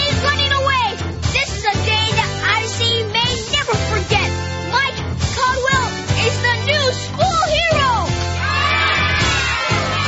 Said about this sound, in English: And the crowd roars for Magnificent Mike!